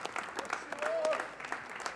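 An audience claps their hands in praise of the Lord in a dense, steady patter of applause, with a brief vocal tone rising faintly beneath the clapping midway through.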